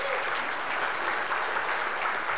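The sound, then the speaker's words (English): An audience claps steadily, a dense patter of many hands blending into an even, sustained wash of applause with no voices standing out. “Yeah, worth a clap.”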